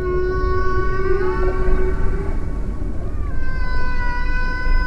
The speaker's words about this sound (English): Researchers say blue whales pass their songs through deep water channels, information traveling across a great stretch of the planet, like an aquatic internet.